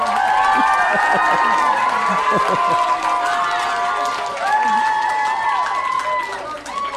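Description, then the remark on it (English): A crowd applauds and cheers steadily for several seconds, a loud wash of clapping with raised voices and whoops rising and falling over it. “Applause, please.”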